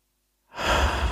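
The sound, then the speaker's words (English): After a moment of silence, one slow, deep breath into the belly rushes in, airy and breathy like a long inhale or sigh, with no talking. “Well, at the moment, we're just breathing into our tummies.”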